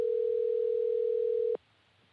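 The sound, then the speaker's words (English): A steady telephone dial tone, heard while an unanswered call is placed again, holds one unbroken pitch for about a second and a half, then cuts off abruptly into near silence. No one speaks. “She really not gonna answer the phone? Nah, we gonna do that again.”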